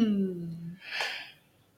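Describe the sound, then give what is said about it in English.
A single yawn: a voiced, falling groan that trails into a breathy exhale, then quiet. No one speaks. “I'm with you on that yawn.”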